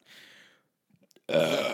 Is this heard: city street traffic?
no